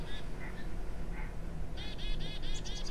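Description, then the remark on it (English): Chickadees chirp in short, high, bright calls, a few scattered notes at first and then a quick run of repeated chirps close together, set against a steady low background hum. “You can hear the braying of the donkeys, the bleating of sheep, and the chirping of the chickadees.”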